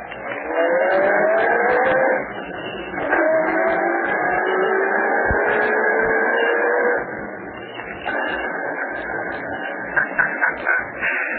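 A car engine revs and pulls away, its pitch climbing through several gear shifts, loud and steady with no voices.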